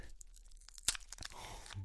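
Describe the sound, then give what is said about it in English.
Crinkly ripping of a Starburst Original candy wrapper being opened, a series of short crackling tears with one sharp snap near the middle, fairly quiet and without any talking. “Please let me listen to the sound of your ripping the paper.”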